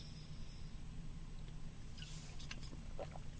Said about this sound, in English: Excuse me. Goodness. Let me take a sip of my coffee and maybe I'll sound better.